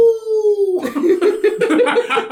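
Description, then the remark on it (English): A voice imitates a werewolf howl with a short, steady, slightly falling tone, then breaks into loud, choppy laughter for the rest of the moment. “A fucking shitty werewolf howling there.”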